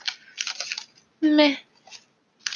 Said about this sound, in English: So, I'm shuffling the Modern Witches Tarot.